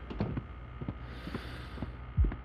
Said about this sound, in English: Breathe. Heartbeats. 3, 4. Can't tell. Ignore it.